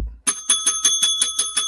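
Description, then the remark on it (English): A bell rings rapidly and loudly, about eight quick metallic dings in a steady rhythm, each tone ringing on between strikes, with no voices. “Tony, ring that bell.”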